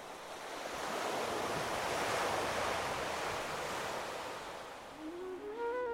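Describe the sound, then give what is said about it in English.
Atlantic Ocean surf washes steadily onto a beach on Sapelo, a remote island, a broad hiss that swells and then slowly recedes, with a faint rising tonal cry near the end and no talking. “When they go to that beach and look over the Atlantic Ocean, they feel something.”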